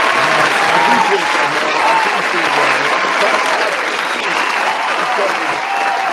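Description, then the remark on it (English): A steady, loud round of applause from many hands, dense and continuous for several seconds, with voices faintly mixed into the clapping. “So we just want to give you flowers, man, and give you a hand clap.”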